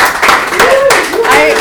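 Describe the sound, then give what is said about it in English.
A short burst of audience applause at a live Q&A event, a steady wash of many hands clapping at once, with a few voices cheering and whooping over it. “Q&A, you guys, a little round of applause.”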